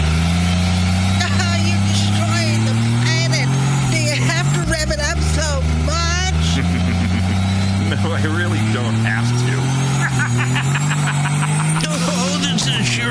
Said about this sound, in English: I'm going to be neighborly and charge your car for you. Stick this in your tailpipe. This diesel truck can charge your vehicle, and we need to get your pink Mary Kay car back to your mom before she wakes up.